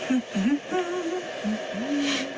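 A woman hums a short tune in her sleep, recorded by a sleep app, in a low, soft voice, a few rising and sustained notes in separate phrases over a faint steady hiss.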